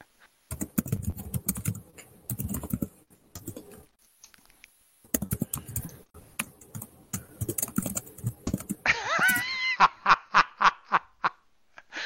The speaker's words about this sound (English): I love that I can hear the typing.